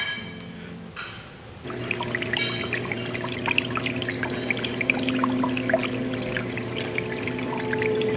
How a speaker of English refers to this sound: Oh, I like the water.